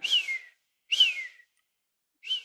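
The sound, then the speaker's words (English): A person whistles three imitations of a red-tailed hawk call, each a high, slightly descending screechy note lasting about half a second, separated by short silences; clear, with no talking. “I am only a whistler. I can do. That's a red-tailed hawk in the distance.”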